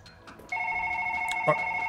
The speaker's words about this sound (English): So I'll and he gets cut off as the phone rings. I'll answer that.